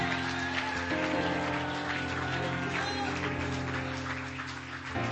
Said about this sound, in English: Clap your hands and help me preach, somebody.